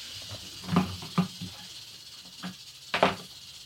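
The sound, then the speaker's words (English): A taipan snake hisses steadily, punctuated by four sharp, breathy bursts of louder hissing, with no voices present. “Taipan's good. Yeah, but it's a nasty son of a bitch.”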